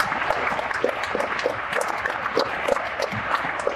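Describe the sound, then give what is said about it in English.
A crowd gives Amway a round of applause, many hands clapping at once in a dense, even wash of sharp claps that holds at a constant level for the whole few seconds, with no voices over it. “So give Amway a round of applause.”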